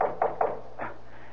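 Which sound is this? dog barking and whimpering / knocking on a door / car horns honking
knocking on a door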